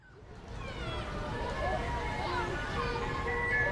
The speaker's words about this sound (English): Oh man, the ice cream truck is coming!